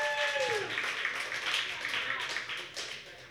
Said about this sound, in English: Did you enjoy the feature? Give another round of applause for our feature tonight.